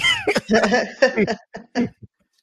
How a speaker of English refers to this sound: Hey, my bartender is in the house tonight. Got me up here coughing.